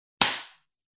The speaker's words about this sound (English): So I'm just going to clap because it's for the post-production guys.